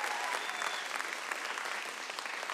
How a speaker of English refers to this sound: Y'all give DJ a great big round of applause.